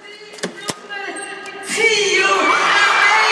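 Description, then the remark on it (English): A couple of sharp clicks and a rising murmur as a door to an auditorium is opened, then a loud wave of crowd cheering floods in and stays steady and bright. “Oh, it's a cheer for me!”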